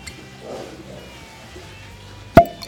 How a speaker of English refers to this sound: Oh, wow. That's probably the best cork pop I've ever had, except maybe on champagne. That is awesome.